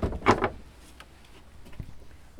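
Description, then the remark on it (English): The wooden door of a small longhouse housing a bookshop is pulled open with a brief scraping thud, followed by a couple of faint clicks and knocks in otherwise quiet surroundings. “And this is where we've got our bookshop. So let's just open the door.”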